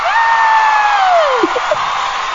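A small group cheers and whoops for a caller from Chicago, one voice holding a long rising-then-falling shout over a steady wash of crowd noise, with a few quick yelps trailing off near the end.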